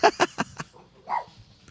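Dogs bark in a quick run of four sharp, loud yelps that fade in strength, followed by a softer whining bark, with no talking.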